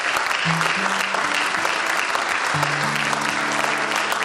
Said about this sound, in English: The Saturday night, I tell you what, you young people should give a big old hand clap for the elders who put that on. How about it? Amen.